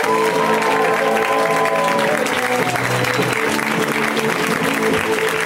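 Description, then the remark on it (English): Loud, sustained audience applause welcoming a comedian on his first appearance on the show fills the whole stretch, a dense steady roar of clapping with some cheering and faint tonal music beneath it in the first half. “This next comic, I believe it's his first time on the show, so whenever we have a comic and it's their first time on the show, we like to give him a big, huge round of applause welcome.”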